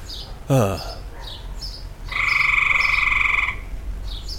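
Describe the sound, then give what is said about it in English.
A reptile call, probably a lizard: a short, sharp croak, then after a pause a long, steady, buzzing trill lasting over a second, fairly loud, with faint chirps in the background. “I think it's some sort of reptile. Like a snake? No, not a snake. Probably like a lizard.”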